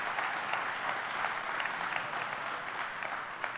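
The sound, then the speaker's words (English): A church audience applauds steadily to thank the Lord, a dense wash of many hands clapping at an even, sustained level for several seconds with no voices standing out. “Yeah, nobody claps alone. Come on, let's really thank the Lord.”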